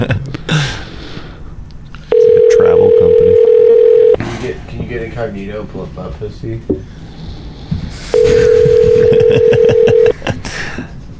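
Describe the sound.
An outgoing phone call rings out twice with a loud, steady electronic tone, each ring lasting about two seconds, while people talk in the pauses between rings.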